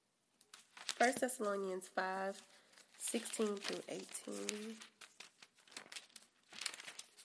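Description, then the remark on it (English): Paper rustles and crinkles in a string of crisp, irregular crackles as a sheet with a Bible verse (1 Thessalonians 5:16-18) written on it is put back in place, while a person hums or murmurs wordlessly over the handling. “Put my paper back in here.”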